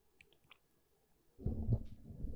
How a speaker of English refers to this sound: Let me get a little sip of water, y'all.